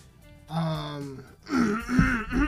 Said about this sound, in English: clear my throat to take this dab.